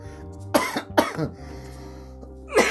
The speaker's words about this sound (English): There it is, the finally fucking cough. It took me 13 minutes.